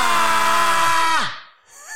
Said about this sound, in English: Should we get one big scream? Ready? Everyone.